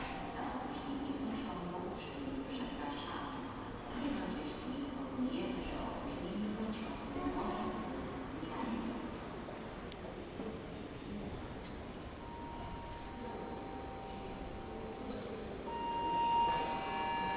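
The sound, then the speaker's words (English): The 6:45 train from Krakow rumbles steadily into a station over a wash of background murmur, with a rising metallic squeal of brakes near the end as it slows to a stop. “Wait until the train has stopped completely before approaching the carriage.”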